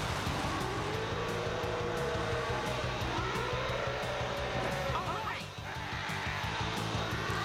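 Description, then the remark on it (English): A man growls a long, rough "Arr" used as the sound effect for a saber-toothed tiger, a loud, gravelly, continuous roar that rumbles low and harsh throughout, with a brief dip near the end. “The saber-toothed tiger, for some reason, they think that it's okay that they use the guy going "Arr!" for the sound effect.”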